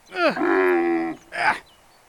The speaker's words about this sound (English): And so, it all started with a camel named Ramadan. All right, now. Come on. Move, you crazy camel. All right, come on. Move it.